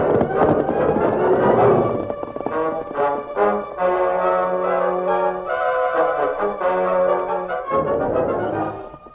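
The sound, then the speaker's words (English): Horses, including Silver and Scout, gallop in a steady, rapid hoofbeat rhythm, mixed with loud, sustained orchestral music that swells throughout. No one speaks. “Come on, Silver. Come up, Scout.”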